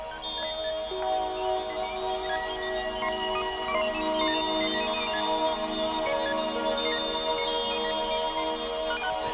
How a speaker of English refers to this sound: It was just the midnight chime.